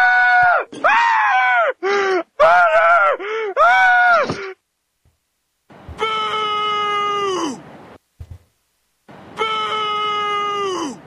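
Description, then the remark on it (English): Loud cartoonish screaming clip of Homer: a burst of short, wavering yelps, then after a brief pause two long, sustained high-pitched shrieks separated by silence. “I should probably play that Homer screaming clip for the entire duration of me talking about that, but I figured a few times would be enough.”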